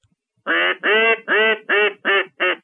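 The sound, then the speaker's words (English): A person imitates a blue-winged teal hen, a small duck, with six quick, nasal quacks in a steady descending series, each call strong, with brief gaps between them. “And a blue-winged teal hen, that's the hen that was doing that sound a minute ago. Actually, me, but I was imitating the hen.”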